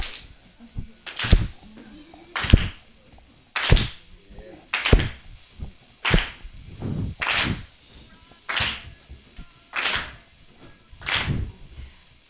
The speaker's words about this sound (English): Just keep clapping, motherfuckers.